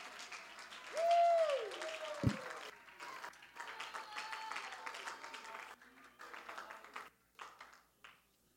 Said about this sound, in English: Somebody ought to clap your hands and worship the Lord. Hallelujah.